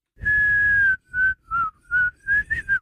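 A whistled tune played in reverse: one long sustained note followed by five short, separate notes, clear with no talking around it.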